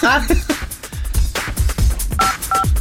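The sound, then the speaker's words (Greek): A couple of short, clear telephone keypad tones beep near the end as a phone call is dialled, following moments of animated talking over a busy, noisy background. “Φυσικά, την παίρνουμε τώρα.”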